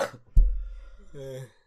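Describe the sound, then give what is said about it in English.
A single sharp cough bursts out, followed a moment later by a short, voiced throat sound, with no speech. “Okay, I'm gonna have to remember to mute that, or else you guys just got some delicious coughing audio.”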